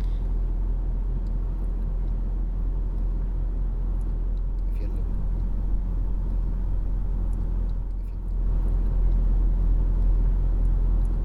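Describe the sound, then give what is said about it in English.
The engine of an SLS AMG sports car with steel brakes drones loudly and steadily as it drives at Goodwood, dipping briefly near the end before surging back even louder with a heavier roar. “Drives Goodwood in an SLS AMG”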